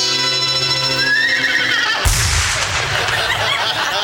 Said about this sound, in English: The staccato hoofbeats of a golden palomino, carrying a man who fights wherever justice needs a champion.